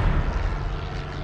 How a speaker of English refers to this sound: She visited North London's Stag Lane Aerodrome and was transfixed by the sight of the planes taking off and landing.